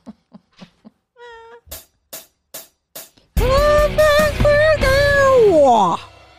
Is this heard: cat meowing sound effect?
yes